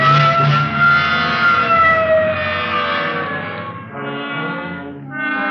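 A loud, wailing police car siren blares continuously, rising and falling in pitch, as the car drives code 3 to a shooting at Washington and Figueroa, with the low rumble of the moving vehicle underneath and no talking.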